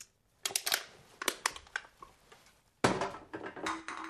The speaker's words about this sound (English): The sound of a can crunching.